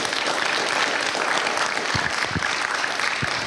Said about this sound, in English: You give him a round of applause.